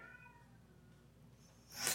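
A cat named Pat howls in a drawn-out, wavering yowl that slowly fades, then a short, sharp, hissing burst flares up at the end. No one speaks, and the whole thing is fairly quiet.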